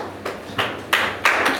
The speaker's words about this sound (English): Clap for the pastor.